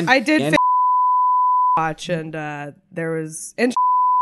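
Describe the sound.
A steady, flat electronic censor bleep cuts over speech twice, covering a spoken person's name, a long tone of over a second and a shorter one at the end, with talking voices in between.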